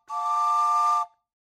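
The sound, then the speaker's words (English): A single steady, breathy steam-style whistle from a model train engine, a bright tone with airy hiss, holding for about a second before cutting off abruptly. “Trevor drops the knife on the floor at the sight of Joe hanging from the rafters with one of the model train engines shoved into his mouth and is still whistling.”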